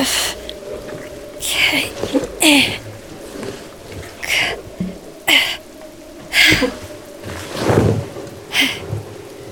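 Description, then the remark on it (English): Steady rain hisses throughout, with several sudden louder bursts and a low rumble near the end, like gusts or thunder rolling through the downpour. “It'll stop raining soon.”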